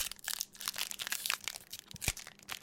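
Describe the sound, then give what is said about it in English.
Crisp, crackling crinkles of a foil Pokemon card pack wrapper being handled and pulled at, a steady run of sharp bright rustles with a few louder snaps, no talking. “How are you supposed to do the Pokemon cards?”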